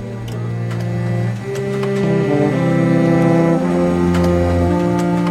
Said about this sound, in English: And there will be the printer, off to the side, chugging away